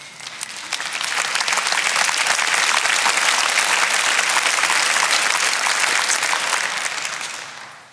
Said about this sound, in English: I appreciate the clap, but let me be honest.